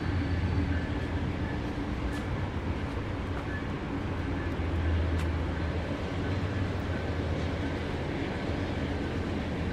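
A steady, loud rumble of trains rolling past on either side, with low droning hum and faint metallic rattles and clicks running throughout without pause.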